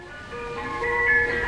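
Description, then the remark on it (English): An ice cream truck's chimes play a bright, tinkling melody of sustained tones, growing slightly louder as they go, with a faint rumble of traffic underneath and no voices. “The chimes of an ice cream truck will send a ripple of delight through even the iciest hearts.”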